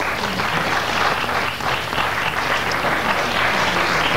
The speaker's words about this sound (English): Has anybody here ever seen one of these things? Yeah. People applaud if you've seen one.